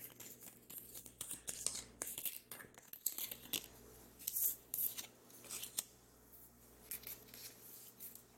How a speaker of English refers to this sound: Hey guys, we're doing a tarot reading today, and I'm fixing to see who the reading is for. Got the card shuffle. So, we're going to see what comes up.